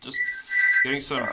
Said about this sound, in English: I never answer the house phone because it's normally someone I don't want to speak to, so I'm running away from it. I'm actually quite surprised you have a house phone. That's so retro.